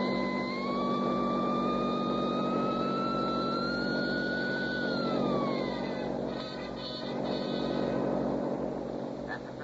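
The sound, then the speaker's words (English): A car engine roars steadily, its whine climbing in pitch for several seconds before dropping away as the vehicle pulls off toward the west gate, with a constant low rumble underneath and no voices. “Kick that sign open and drive straight to the west gate.”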